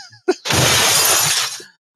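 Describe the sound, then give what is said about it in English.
A short knock, then a loud, bright crash of dishes shattering that sprays for about a second with tinkling fragments before fading out. No voices are heard. “That's people throwing the dishes out the window so she doesn't come and visit them for dinner.”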